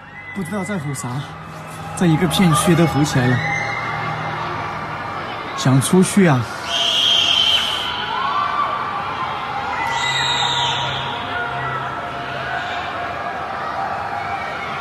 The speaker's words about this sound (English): Taken from a man in Wuhan's apartment, he appears to have captured the tortured screams of those trapped inside their tiny apartments, slowly losing their minds.